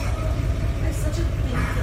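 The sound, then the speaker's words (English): A lifted pickup truck's engine rumbles steadily as it slowly rolls onto a man's foot to pop his dislocated toe back into place, a continuous low growl with muffled voices faintly in the background. “Is a dislocated toe, and he's having this dude on a lifted truck pop his toe back into place with his truck.”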